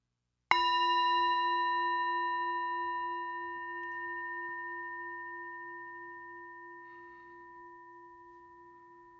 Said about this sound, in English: And we'll start and end with the bell as we do.